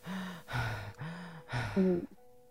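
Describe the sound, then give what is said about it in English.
Heavy, out-of-breath panting from a voice imitating it, demonstrating the deep breathing after exercise: several deep voiced gasps in quick rhythmic succession, fairly loud, with no talking. “To be out of breath or to get out of breath. And it's when you do exercise and then you end up breathing deep, like...”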